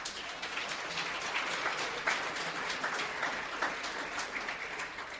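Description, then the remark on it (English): A crowd applauds Paul Roberts at an Orange County community radio event, many hands clapping in a dense, even wash of sound that holds at a constant moderate loudness throughout, with no voices standing out. “Could you give a round of applause for Paul Roberts?”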